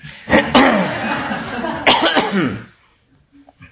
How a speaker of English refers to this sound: … keeps coughing and clearing his throat right when I'm about to enter samadhi